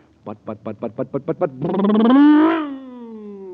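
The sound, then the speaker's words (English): A voice imitates a cosmic surface car engine supercharged with super fuel: about eight quick, rhythmic putters, then a loud, rising roar that swells and holds as the engine revs up, alone. “Yes, sir, that cosmic surface car is really roaring now because it's supercharged with super fuel.”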